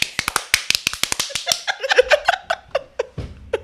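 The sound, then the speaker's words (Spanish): A quick run of sharp hand claps, about two dozen in an uneven rhythm, with laughter breaking in over the later claps. “Hoy sí vota. Tercer aplauso.”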